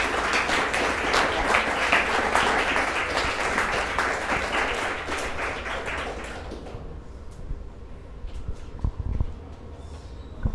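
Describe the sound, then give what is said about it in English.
An audience breaks into a round of applause before a Q&A session, dense and steady for about six seconds, then thins out into a few scattered claps and fades into quiet murmuring. “With that, let's give a round of applause before we start the Q&A.”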